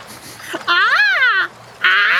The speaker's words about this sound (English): A seagull in the background.